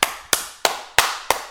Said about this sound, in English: start applauding. This is no exaggeration. Yes, exactly like that.